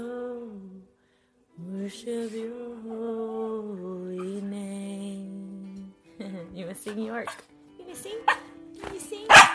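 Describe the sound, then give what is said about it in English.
A dog barks at night, starting with long drawn-out yowling calls and ending with a cluster of short, sharp barks and yips. “So, my dog's driving me crazy tonight.”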